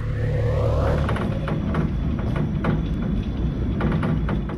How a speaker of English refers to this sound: Yeah, you hear that? Storms over California so intense, that sound right there are winds rattling the windows of this skyscraper. This is in San Francisco, California.